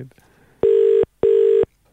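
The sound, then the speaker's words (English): A phone call's ringing tone sounds twice, two loud, steady electronic burrs in quick succession with a short gap between them, heard clearly over a line after a brief quiet moment. “It's ringing at least.”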